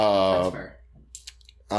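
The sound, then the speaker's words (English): A few soft, scattered computer keyboard clicks in a short lull, bracketed by a person talking before and after. “Don't be touching another keyboard.”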